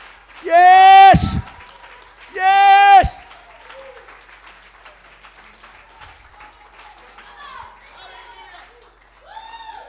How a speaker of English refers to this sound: Come on, someone clap their hands just a little longer right now. Someone clap their hands a little longer.